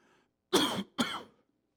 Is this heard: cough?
yes